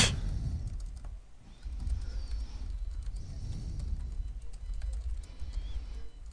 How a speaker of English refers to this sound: What is happening there? Oh, sorry, I was typing.